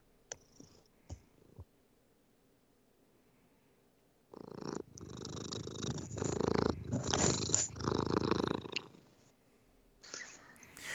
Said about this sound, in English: Can you get him to purr again?